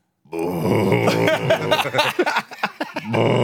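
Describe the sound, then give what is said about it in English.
A voice imitates someone retching and gagging while straining to hold back vomit, with drawn-out groaning heaves and choked, sputtering bursts, loud. It imitates a man in the corner of the camp at Snake Rock trying not to throw up. “there's no pride in holding it down. Just go and chuck it up.”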